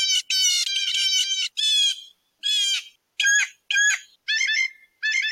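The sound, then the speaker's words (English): A single blue jay gives some of its more common calls repeatedly, about nine harsh, buzzy cries in quick succession that shift in pitch and tone from one to the next, loud with no talking. “So there are just some of the sounds that they make.”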